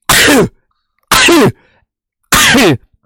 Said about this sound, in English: I sneezed